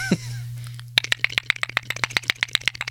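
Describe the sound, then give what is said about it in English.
A cat named Bill pushing a microphone out of the way: after a low steady hum, a quick run of sharp clicking, rattling knocks, roughly evenly spaced, fills the last two seconds with no voices. “He's still moving it. He's moving it further away. This little fuzzy cat bastard.”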